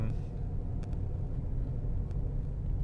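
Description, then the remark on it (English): Steady, low rumbling road noise from inside a moving car while driving to the gym, a constant droning hum with a couple of faint brief clicks, filling the whole stretch without any clear talking. “I'm actually not driving to work right now, and it's on the same day that I recorded the last podcast episode, which was kind of my return to this format of me driving in my car and talking.”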